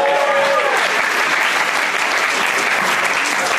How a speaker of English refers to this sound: How many folks have not seen Lucy yet? Applaud if you haven't seen Lucy. Laura's applauding. Laura Silverman, everybody.